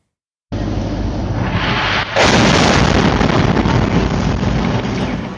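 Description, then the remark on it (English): A loud, rumbling explosion from Russian military strikes on an apartment complex and two schools in Chernihiv, northern Ukraine, roars in after a brief buildup of noise, its blast sustaining a heavy, distorted boom that rolls on for several seconds without any voices. “That's the explosion after Russian military strikes hit an apartment complex and two schools in Chernihiv in the northern part of the country.”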